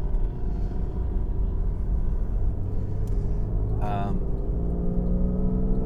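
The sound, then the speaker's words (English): A diesel pickup truck's engine rumbles steadily just ahead of the speaker, a loud, continuous low drone with a slight rise in revs and a brief higher-pitched squeal partway through. “I got a stinking diesel pickup truck in front of me.”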